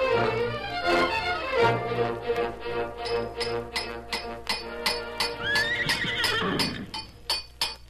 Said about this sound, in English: I'll have you finished in no time, Silver. Brand new shoes for the finest horse that ever lived.